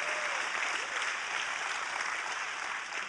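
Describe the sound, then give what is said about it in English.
An audience claps to thank God for His Word after a Bible reading, a dense, continuous patter of many hands with no pauses, fairly loud throughout the few seconds. “I want you to just clap and thank God for His Word.”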